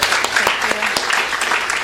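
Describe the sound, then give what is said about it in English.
An audience at a literary reading hosted by Skylight and Zyzzyva applauds David Ulin: steady, dense clapping that fills the whole moment without letting up. “Can we get one more round of applause for David Ulin for leading?”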